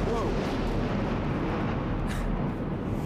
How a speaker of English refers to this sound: Well, that was a rather large explosion.